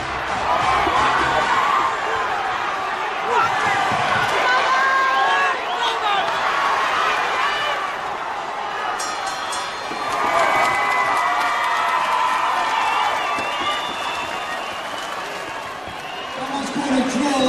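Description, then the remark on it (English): A loud, rowdy crowd cheers and shouts continuously at a boxing fight between two local men on a boxing night in Stoke, a dense roar of many voices with occasional louder surges, sustained throughout without pause. “They've both got a big following. It's going to get loud, it's going to get rowdy.”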